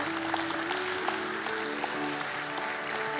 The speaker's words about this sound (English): Can you clap your hands to Jesus tonight, please?